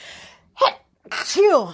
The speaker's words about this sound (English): I'm going to sneeze.